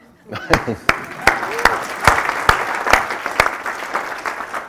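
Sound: applause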